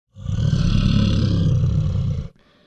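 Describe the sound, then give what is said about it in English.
A bear growling sound effect: a single deep, rumbling growl sustained for about two seconds, loud and throaty with a rough low texture, then cutting off abruptly into near silence. “God, wouldn't it just piss off Rory if I dropped a sound effect of a bear growling every time he said bear with me?”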